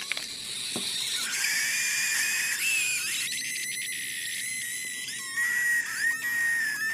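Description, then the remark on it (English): A thin, high-pitched squeal of gas escaping through the lid on a Coke, wavering and stuttering on and off for several seconds with faint hissing, with no one talking. “The soda scream?”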